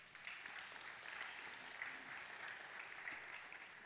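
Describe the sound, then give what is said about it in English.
An audience applauds steadily, a dense wash of many hands clapping at an even level for about four seconds with no talking over it. “Absolutely, you can applaud that.”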